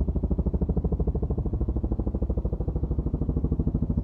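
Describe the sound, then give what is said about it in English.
A helicopter passes overhead with a loud, fast, rhythmic thudding of rotor blades over a deep engine rumble, steady for the whole stretch with no voices. “Whoa, that's an insane helicopter.”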